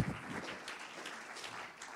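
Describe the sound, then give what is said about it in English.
A crowd claps their hands in a dense, steady patter of overlapping claps that holds fairly soft and even throughout, with no voices standing out. “And somebody ought to give him a hand clap.”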